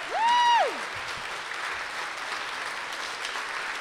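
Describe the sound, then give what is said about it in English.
A crowd applauds steadily for the teachers who helped make this possible, the clapping a dense, even patter throughout, opened by a short rising-and-falling whistle from someone in the audience. “a round of applause for the teachers that helped make this possible here.”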